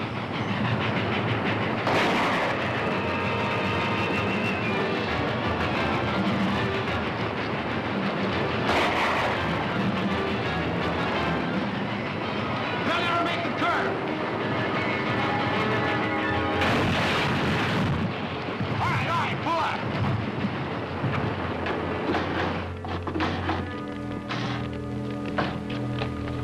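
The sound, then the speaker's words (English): A special train to Dodge City picks up speed as it nears a curve, roaring along with a loud, continuous rumble and rhythmic clattering of wheels on the rails. Steady tonal notes ring out over the din near the end, and no one speaks. “It's picking up speed. They're getting near the curve.”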